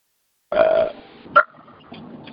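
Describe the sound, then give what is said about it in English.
A loud, drawn-out burp rumbles, followed by a brief sharp sound and then quiet background murmur. “And then we have people that burp.”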